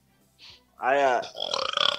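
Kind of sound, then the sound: human body sound, burp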